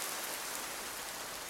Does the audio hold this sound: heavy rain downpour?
yes